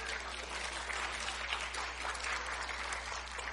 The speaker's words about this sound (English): Come on, I need some encouragement. Get on up here. I need some encouragement. Give a hand clap of praise to the Lord.